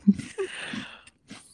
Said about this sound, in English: I have to make way for your chewing. Make way.